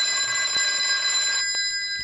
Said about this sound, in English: Well, why do you think I'm reacting this way? I've only heard that phone of yours in the office ring in my entire life. Strange.